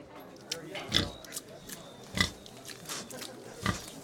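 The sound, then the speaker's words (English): A pig oinks three times in short, snorting grunts spaced a second or so apart, clear over a low murmur of background noise. “Would raising your own pigs make you feel better about enjoying bacon?”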